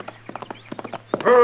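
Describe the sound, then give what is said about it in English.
Horse hooves clip-clop in a quick, uneven gait as a rider approaches riding hard, drawing nearer, and a loud, sustained tonal cry breaks in at the very end. “Here he comes now. Yeah, looks like he's been riding pretty hard.”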